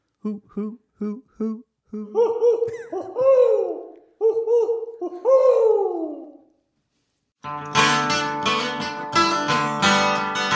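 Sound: owl hooting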